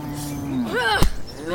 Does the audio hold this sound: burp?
no